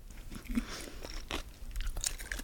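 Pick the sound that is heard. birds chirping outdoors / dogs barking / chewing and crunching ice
chewing and crunching ice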